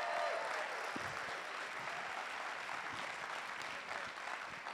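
An audience claps steadily throughout, a dense, even wash of many hands with no pauses and no voices rising above it.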